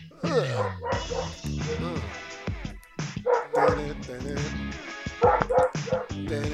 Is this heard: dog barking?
yes